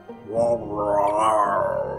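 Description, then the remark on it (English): A voice imitates a dog growling as it enjoys being petted: a low, rumbling, sustained snarl lasting about two seconds, swelling slightly in the middle with a raspy, throaty texture. “The dog enjoys your petting as it rumbles out a growl.”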